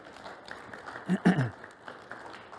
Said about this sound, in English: Why don't we give them an applause?